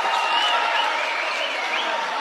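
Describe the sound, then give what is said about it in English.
A near-capacity basketball crowd cheers after a give-and-go layup, a steady, loud roar of mixed voices and noise that holds at full strength for a couple of seconds without letting up. “That gets this near-capacity crowd engaged, and Coach Surge will spend a timeout.”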